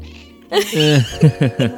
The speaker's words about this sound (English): Our cat Fig has missed us so much whilst you've been away. You'll probably hear a lot of her in this episode.